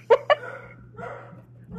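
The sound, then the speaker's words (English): A dog gives two quick, sharp barks in succession, followed by quieter, drawn-out vocal sounds that fade, with a steady low hum running underneath. “Dogs. Zeb does not approve of this plotline.”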